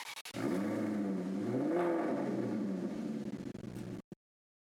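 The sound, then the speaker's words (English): A 2011 Maserati GranTurismo S engine revs loudly, its deep growl climbing in pitch and falling back over about four seconds before cutting off abruptly. No one speaks. “That was a 2011 Maserati Gran Turismo S.”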